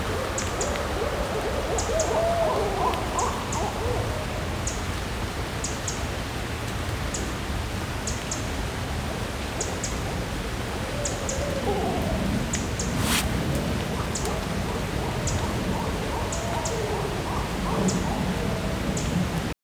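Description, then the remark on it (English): A pair of barred owls on the waterfront in Tacoma call and hoot in several excited bursts of low, rising and falling hoots, giving their 'who cooks for you' and guffaw calls. A steady hiss runs underneath, with faint, regular high-pitched chirps throughout. Recorded on an iPhone. “farther along the waterfront here in Tacoma, and a pair of barred owls just went crazy, calling and hooting, doing their fabulous who cooks for you call, and their guffaw calls.”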